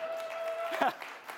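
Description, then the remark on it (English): An audience applauds with a steady, dense patter of clapping throughout the short clip, briefly joined midway by a voice rising over it, with a faint high steady tone underneath. “Come on, a round of applause.”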